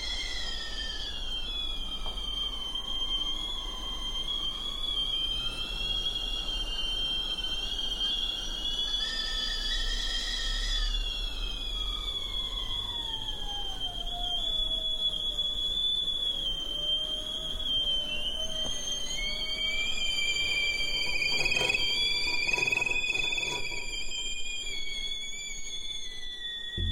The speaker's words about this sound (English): they sort of created this composition with them by picking up teapots so they got quiet and then putting them back down so that they would whistle again. And they were not beautiful sounding teapots. They were those teapots with shrill whistles.